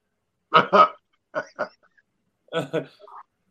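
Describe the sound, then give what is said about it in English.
A man imitates a dog barking, barking at his dog, giving three quick pairs of short, gruff woofs spaced about a second apart, fairly loud, with brief silence between them. “He had one video that did 90.7 millions by barking at his dog.”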